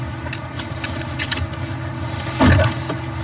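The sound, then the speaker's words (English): Car power door locks engage with a loud, solid mechanical thunk heard from inside the vehicle, preceded by a few light clicks over a steady low cabin rumble. “Power door locks. Standard, of course.”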